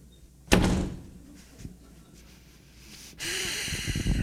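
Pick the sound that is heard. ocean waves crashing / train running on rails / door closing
door closing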